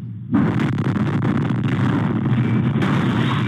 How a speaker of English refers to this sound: The quiet of Christmas morning shattered just after 6:30. A chilling message blaring from the RV seconds before it exploded. The blast could be felt miles away.